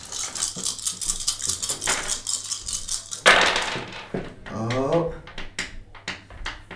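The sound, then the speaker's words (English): Dice rattle and clatter on a hard surface in a rapid burst of clicks, ending with a sharper tumble, followed by a brief murmur of a voice; the dice are rolled for a fighting attack with a blade, with an extra die for expertise. “So if you care to roll fighting, make an attack with your blade. So yeah, you get an extra one dice for your expertise as well.”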